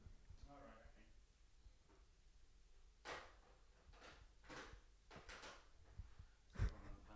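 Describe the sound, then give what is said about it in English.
The door of a flat opens and shuts as someone from another flat calls, with several rustling, scraping bursts and a solid thump near the end, while faint indistinct voices murmur in the background. “Somebody at the door.”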